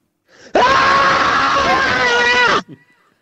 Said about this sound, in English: Do you reckon you've got a pretty good primal scream on you